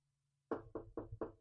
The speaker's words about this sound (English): Yeah, I'm knocking on wood right now